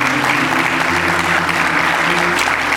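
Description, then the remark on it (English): Steady applause from a crowd of people clapping together in praise of God, a dense continuous patter filling the whole stretch, with a low sustained instrumental tone humming underneath. “Give Him a good hand clap of praise.”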